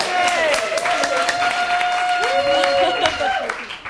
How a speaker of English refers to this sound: A round of applause for our volunteers!